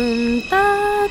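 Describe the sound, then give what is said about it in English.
A single voice imitates the New York subway departure chime heard on the platform as a train is about to leave the station, humming a sustained lower note that steps up to a higher held note, clear and steady. “And you hear these three pure high tones.”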